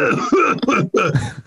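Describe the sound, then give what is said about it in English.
A loud cough in a few rough, raspy bursts, with a brief break before a final hacking push, picked up directly by the microphone despite the mute button being pressed, with no talking. “I'm going to press mute and cough and see how it goes.”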